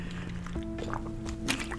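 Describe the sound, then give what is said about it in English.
Someone takes a quick drink of water, with soft wet sips, a gulp and small liquid squishes over a faint steady background hum. No one speaks. “Let me drink a little water.”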